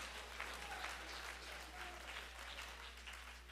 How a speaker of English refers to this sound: Somebody clap your hands and praise God.